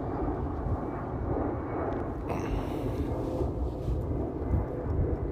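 A deep, steady rumble of an airplane passing overhead fills the whole stretch, holding a low roar with a slight swell partway through and no voices.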